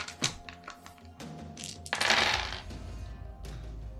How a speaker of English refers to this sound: Oh god, I've got to roll so many dice now.